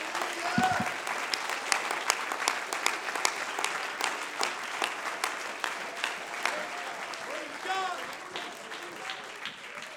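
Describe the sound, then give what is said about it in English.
A crowd claps steadily throughout, dense overlapping handclaps filling the room, with scattered voices calling out faintly beneath the applause. “Oh, clap your hands with all of your might.”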